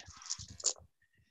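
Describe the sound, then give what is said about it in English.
A brief burst of twelve-sided dice clattering and tumbling across a table as the rest of eleven dice are rolled after one is taken away. A rapid rattle of small hard knocks settles and stops within a second, moderately loud. “Okay, so I'll take 1 dice away and then roll the rest.”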